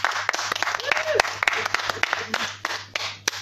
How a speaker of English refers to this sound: Well, round of applause for everyone.